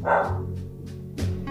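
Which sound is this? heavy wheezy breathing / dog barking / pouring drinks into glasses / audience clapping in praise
dog barking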